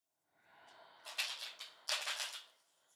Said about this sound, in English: I'm starting to shuffle the cards, and I really want you to reach out and reach into them.